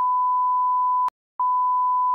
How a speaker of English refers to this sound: I've got fucking bleep all day. Stupid. And yeah, I know I have to censor that as well, you prick.